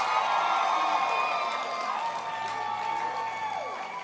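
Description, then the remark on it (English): A church audience claps and cheers for the dancing stars, one of the church's creative arts groups: a dense, steady wash of applause mixed with high whoops and shouting voices that carries on throughout and eases slightly toward the end. “Clap your hands for the dancing stars.”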